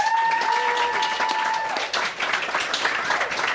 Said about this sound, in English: A lot of fans here. I asked people to come and cheer for me. Thank you.